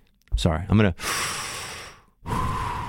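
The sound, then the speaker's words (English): A brief voiced hum gives way to two loud, drawn-out breaths with a pause between them, a person imitating one-nostril breathing exercises. “I'm like Hillary doing one nostril breathing.”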